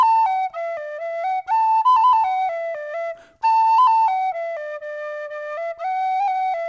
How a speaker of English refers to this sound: And the boy touched the penny whistle to his lips, and he began to play the sweetest song.